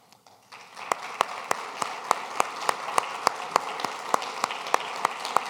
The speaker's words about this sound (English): If you serve in the military or have served in the military, would you just stand so we can give you a round of applause and thank you?